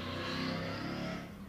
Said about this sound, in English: I don't even see a cool car. I don't even see a cool car. I heard a cool car. I didn't see a cool car.